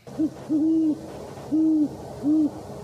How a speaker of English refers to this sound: It's the classic great horned owl.